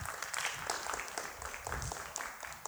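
A crowd applauds steadily, dense overlapping claps forming a continuous crackling wash at moderate volume with no voices, holding evenly for a few seconds.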